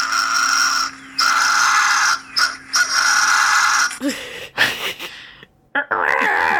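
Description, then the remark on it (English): A fisher cat's call: loud, raspy screeching in several long harsh bursts, followed by shorter, choppier wheezing cries and squeals, with no talking. “This is the Fisher cat, which I know you've said you've heard, but I want everybody else to experience it too.”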